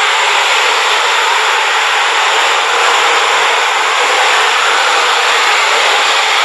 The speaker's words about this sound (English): Well, it's relaxing for me anyways. It kind of sounds like a fan or white noise or the ocean. And this just makes it really easy for me to sleep. I can fall asleep in 2 seconds when that sound is on.